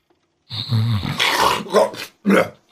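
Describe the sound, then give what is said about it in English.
A voice imitates loud snoring, with rough, guttural rasping snorts in a few uneven bursts, the first long and drawn-out, followed by two shorter grunting breaths. “you snore yourself into consciousness.”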